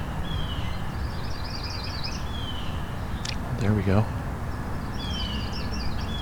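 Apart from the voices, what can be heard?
yellow-rumped warbler singing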